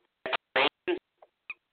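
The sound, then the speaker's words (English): A device-fails-to-connect notification sound: three quick, bright squeaky chirps followed by two fainter, shorter blips that trail off, with no talking. “Device fails to connect, like a halfway that didn't quite go anywhere.”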